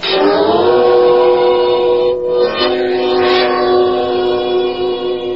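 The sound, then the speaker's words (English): A train's horn blares loudly and continuously over a steady rumble, its pitch wavering and shifting midway, in a railroad station in a large eastern city in the early evening. No one speaks. “Tonight's file opens in a railroad station in a large eastern city.”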